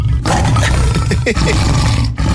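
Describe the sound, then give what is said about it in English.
A tiger at Fota lets out a loud roar, a deep rumbling growl that swells and holds for a couple of seconds before cutting off, with no talking over it. “We need you to roar like a tiger, like him.”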